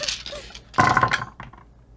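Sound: dice being rolled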